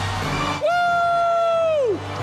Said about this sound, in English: The crowd cheers in Punxsutawney! Wow. How exciting right there. What a hype man.